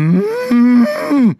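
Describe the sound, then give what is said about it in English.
A person imitates a cow's moo in one loud, drawn-out, wavering call with rising and falling pitch, about a second and a half long, with no other sounds. “Although your cow imitation is very, very good.”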